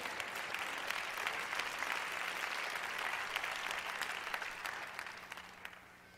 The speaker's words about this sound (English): That was such a rousing applause.